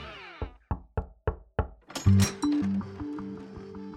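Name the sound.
knocking on a door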